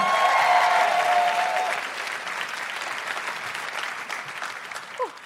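A crowd applauds steadily, the clapping loudest at first with a few cheers and whoops on top, then easing into a lighter, sustained patter of hands before a brief voice cuts in at the end.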